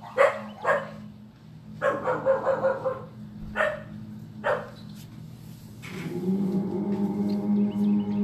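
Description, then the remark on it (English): A dog barks in short, irregular bursts, a few quick single barks and a rapid cluster, moderately loud, before trailing into a longer drawn-out whining tone. “We got the dog saying hi.”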